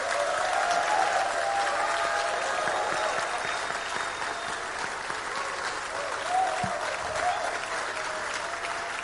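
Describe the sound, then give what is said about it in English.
An audience claps steadily for about nine seconds, a dense, even wash of many hands with no clear individual beats, with faint crowd murmur and a few raised voices mixed in. “Is that how we're going to clap, men?”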